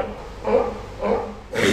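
A wild animal gives a sneeze-like alarm call, three short, harsh, explosive bursts evenly spaced about half a second apart, fairly loud over a low background rumble.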